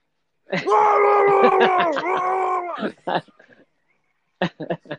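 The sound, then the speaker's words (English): A man screaming along to a song lets out a long, loud, strained scream lasting a couple of seconds, followed by a few short vocal bursts and sharp clicks, with no music behind it. “And I was just screaming through the whole thing.”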